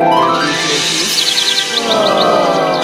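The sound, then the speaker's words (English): A quick series of high, bright bird chirps repeats in an even rhythm over a steady background hum, clear, with no one speaking. “Why hear birds?”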